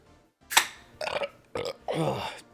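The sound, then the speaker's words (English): A string of four loud burps in quick succession, the first a sharp blast and the last a longer, rumbling belch, with no talking over them. “I hope you guys can hear these fucking burps coming out of me.”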